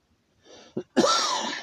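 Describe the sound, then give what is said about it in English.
A person with an allergy clears their throat and then coughs. A short raspy throat-clear is followed by a brief burst and a longer, harsh, loud cough, with no talking. “I might be doing some coughing. I got an allergy, and it causes me to cough this time of year, so we're going to give this a try.”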